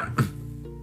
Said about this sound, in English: Pooh gave a little cough and then began.